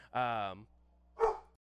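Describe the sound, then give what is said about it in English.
A dog barks twice, loud: first a long, drawn-out bark, then a short, sharp yap a moment later, with near silence in between. “Dogs started to go crazy.”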